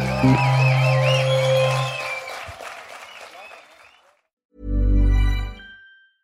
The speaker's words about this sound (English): Anyway, look, thank you. You've been an absolutely brilliant audience. Give yourself a big round of applause.